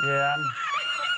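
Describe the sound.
A singer's voice starts on a lower sung note, then leaps into a piercing, squeaky, self-taught whistle tone that holds for under a second, loud and shrill.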